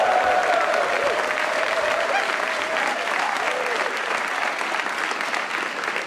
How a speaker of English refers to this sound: All right. Thank you, ladies and gentlemen, for that awesome round of applause as we move on to a game show we like to call the Twitter Cast.